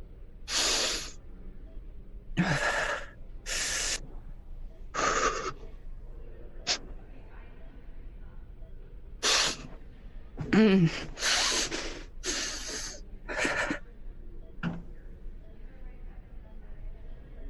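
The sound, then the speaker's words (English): Ragged, panicked gasping breaths of a person sitting on a closed toilet lid, trying to steady their breathing: a dozen or so sharp inhales and exhales in an uneven rhythm, with short pauses between as the breathing struggles to settle. “I'm just gonna sit on the closed lid of the toilet and just kind of drum my hands on my knees, try and get myself into that rhythm of breathing.”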